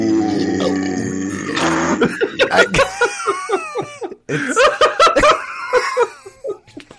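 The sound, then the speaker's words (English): A long, deep, rumbling burp, followed by bursts of giggling and chuckling laughter from several people. “it's a plethora of burps and farts, and I'm a child, and I love that stuff.”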